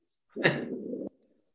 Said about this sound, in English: You got a hound dog? No, he's a boxer, but he barks kind of like a hound dog.